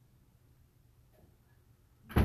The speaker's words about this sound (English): Now shut the door. Don't forget to shut the door.